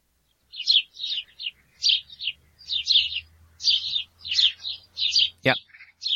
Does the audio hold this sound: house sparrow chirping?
yes